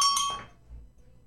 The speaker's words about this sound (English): I'm going to let that bell go. Yeah, it's fine. Yeah, the bell goes there. That's all it is.